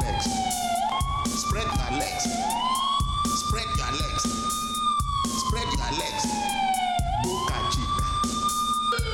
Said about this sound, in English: Man, this one too be so good in the club. Imagine this song goes off and the police siren's just blaring.